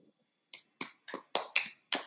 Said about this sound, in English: What? Why are you clapping? You know, I just like it when people put on a show. Yeah. You have to. I'm clapping because it's a good reminder of why the formula works.